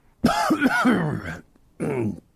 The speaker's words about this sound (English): Sorry, Oh, sorry, mate, I can't hear you over this terrible cough.